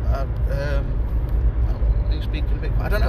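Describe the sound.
A steady, low Skoda car engine drone fills the cabin from inside, constant and fairly loud beneath a man talking casually over it.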